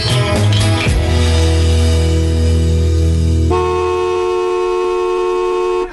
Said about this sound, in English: And that sounds like the traffic down at Jake Ivory's in West Bridgewater